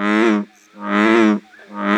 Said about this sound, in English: And what frogs would we hear in June? In June, expect to hear in Brown County, bullfrogs would probably be most conspicuous.